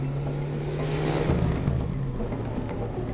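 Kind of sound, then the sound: vehicle, car engine revving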